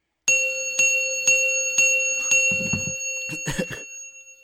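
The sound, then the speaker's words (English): A bright metallic bell dings five times in a steady, even rhythm, each strike ringing on and blending into the next, followed by a few short noisy bursts at the end. “Do the dings.”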